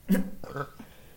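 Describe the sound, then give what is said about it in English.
A single short, loud, low-pitched burp after drinking rosé cider erupts at the start, followed by a couple of softer voiced noises that trail off into quiet. “Hold on, I need to burp.”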